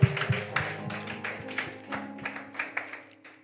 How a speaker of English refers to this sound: Clap for Jesus again.